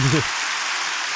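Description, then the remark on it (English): A crowd applauds in a steady, dense wash of clapping that holds at an even level throughout, with a brief voice heard at the very start. “Accept your applause, you old fucker.”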